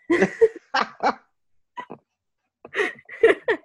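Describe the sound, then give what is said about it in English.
A person imitates a dog barking with a series of short, throaty woofs in uneven bursts, fairly loud, with a brief pause midway before a final cluster of barks. “First, you barked at me.”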